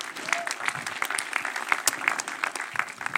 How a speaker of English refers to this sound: Can we give the worship team a round of applause for a great job?